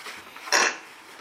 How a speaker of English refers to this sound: Bless you.